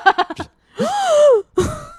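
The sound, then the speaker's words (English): A voice acts out a theatrical courtroom gasp: a few quick, breathy catches, then a long, drawn-out vocal 'ooh' that swoops up and down, followed by another short startled gasp, fairly loud. “I bet when she said that, the courtroom gasped.”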